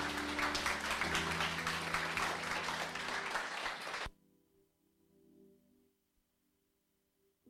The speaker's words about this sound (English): Let's give the Lord the loudest clap offering.